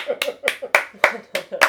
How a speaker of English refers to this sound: Applauding ourselves. It's like, hey, let's clap for a bit.